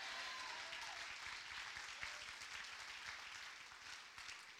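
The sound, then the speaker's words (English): An audience claps steadily, a dense wash of many hands with no clear rhythm, sustained and fairly loud throughout with a faint murmur of voices mixed in. “Jump to your feet and clap your hands and shout, amen.”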